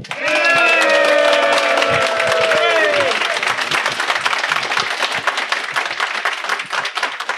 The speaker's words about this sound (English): And with that, let's give a hearty round of applause and welcome to Miss Kimberly Tripp.